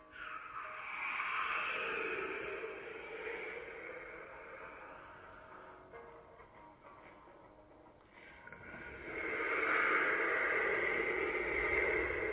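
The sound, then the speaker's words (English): A man blows and hisses air through the mouth in long, breathy whooshes whose tone sweeps up and down, easing into a quieter stretch before swelling loudly again, recorded as a sci-fi sound effect for a song. “making air sounds with his mouth.”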